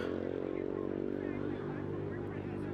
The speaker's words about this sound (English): hold on, there's a car going by, walking down the road.